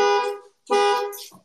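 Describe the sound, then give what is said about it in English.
An old Explorer beeps loudly after its key fob is sat on, sounding brassy, horn-like blasts in a steady repeating pattern: two long honks with short gaps, then a third starting. No one speaks. “I sat on my keys and the old Explorer just started beeping like crazy.”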